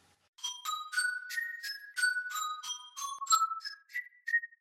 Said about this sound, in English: Wow, this doorbell still works.